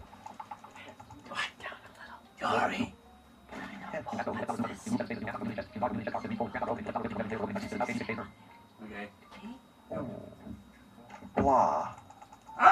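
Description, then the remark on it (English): Fast, clattering keystrokes on a Perkins braille keyboard come in a dense burst, with quiet whispering and a few louder thumps before and after. “It's a Perkins keyboard, right?”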